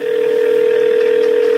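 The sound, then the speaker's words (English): A telephone ringing tone on a 911 emergency call made on Thursday, November 20, 2008: one steady, unbroken electronic tone at a fairly low pitch, holding at an even loudness for the whole stretch with no voices. “So it's Thursday, November 20th, 2008, and again, we get a very believable 911 call.”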